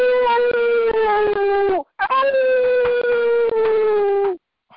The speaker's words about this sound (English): That's one of them New York City lone wolves here you hear in there. Yeah, yes it is.